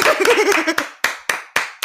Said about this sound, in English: So clap it up for the fact that we made this podcast without crying.